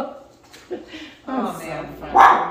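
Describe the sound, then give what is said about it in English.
Several dogs bark and whimper in short, excited bursts, with yips and whines overlapping, the loudest bark near the end, while a person talks underneath. “Sorry about our dogs. They're always having a heyday.”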